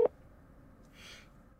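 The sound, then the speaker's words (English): A single short, mid-pitched beep of a phone call dialing tone sounds at the very start, followed by quiet line hiss and a soft burst of static near the end; no one speaks. “Should I just call? Let's see if that works.”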